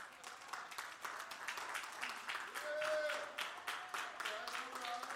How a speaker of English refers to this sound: I appreciate y'all giving me that respect, but I want you to give God a hand clap of praise.